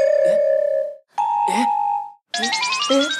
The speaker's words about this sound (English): there's a little chime that plays each time Shikaru says something alarming